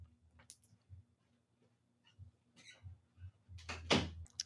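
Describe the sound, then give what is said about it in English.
A door being closed: a few scattered clicks and shuffles, then a louder latch clack and a solid thump at the end, with a faint low hum underneath. “Before I continue that, my neighbor is bumping some bass, so I'm going to go close a door real quick and try to fix that.”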